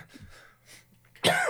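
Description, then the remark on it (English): After a quiet stretch with faint throaty murmurs, one loud, harsh cough bursts out near the end and rasps on briefly. “Cough, cough.”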